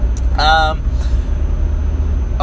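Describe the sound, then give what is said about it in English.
A car rumbles steadily in the background, a low continuous engine and road drone that stays at an even level throughout, with a brief voice-like sound near the start. “So you probably hear a car in the background.”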